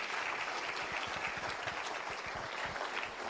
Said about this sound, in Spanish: Round of applause. Un aplauso a Cristo.